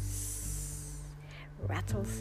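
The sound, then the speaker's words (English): A person imitates a rattlesnake hissing, a steady breathy 'sss' lasting about a second over a low background hum, followed by a short breathy vocal sound. “I see a rattlesnake sliding by me.”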